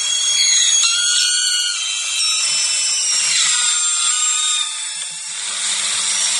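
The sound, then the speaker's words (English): A stick or branch fallen across power lines whistles and shrieks as current flows through it until it ignites, arcing: a loud, continuous, high-pitched buzzing screech with shifting tones that dips briefly near the end, then resumes. No voices. “So my first guess is that this week's noisy is the sound of a stick or a branch that has fallen across power lines, whistling as current flows through it until it fully ignites, creating an arc.”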